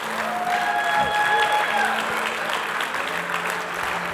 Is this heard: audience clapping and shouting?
yes